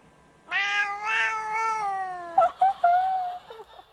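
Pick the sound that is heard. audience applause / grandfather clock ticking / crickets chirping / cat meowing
cat meowing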